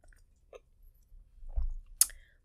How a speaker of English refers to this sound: Now, it is also Wine Wednesday, so I am going to take a sip of my Jacob's Creek wine.